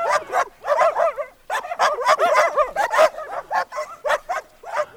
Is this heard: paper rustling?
no